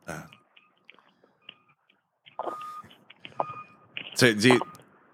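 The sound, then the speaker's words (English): Short electronic beeps repeat at a steady pitch in the background, fairly faint at first, then joined by shuffling noise and a brief loud burst of voices near the end. “And there's of course there's a loud beeping noise in the back.”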